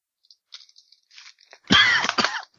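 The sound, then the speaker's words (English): Faint breathy rustles lead into a loud, harsh cough from a person with allergies, followed quickly by a second shorter cough and the start of another at the very end. “I mean, I have allergies, man. Rather than, like, sniffle and such, I cough.”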